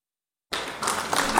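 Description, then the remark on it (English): An applause sound effect cuts in abruptly after a brief silence, a dense wash of many hands clapping that holds steady and grows slightly louder for about a second. “Hit the claps”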